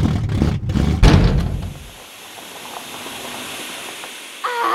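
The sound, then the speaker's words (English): A car engine rumbles and sputters with a couple of heavy clunks, then dies out, leaving a long fading hiss like escaping steam, with a short squeaky whine at the end. “Your shitty speech broke the car.”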